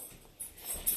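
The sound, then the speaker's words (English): A dog eagerly bats a kibble-filled treat ball across a hard floor, giving a couple of quick plastic knocks and rattles, fairly quiet, with no voices. “He is eagerly batting around his treat ball, which I have to put his kibble in a treat ball because he will scarf it down too fast.”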